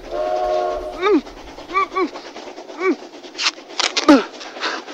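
A voice imitates an approaching train on railway tracks: a sustained horn-like whistle, then rising and falling wails and breathy chugging hisses, loud.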